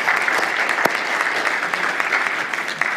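Steady applause from a crowd, a dense, even patter of many hands clapping at once, holding at a constant loud level throughout with no voices standing out.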